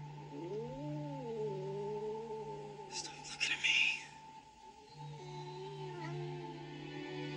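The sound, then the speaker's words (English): A cat named Clovis meows and caterwauls in long, wavering yowls over a steady electronic hum, with a short burst of rustling noise midway and a man speaking briefly. “But the cat Clovis can still see him.”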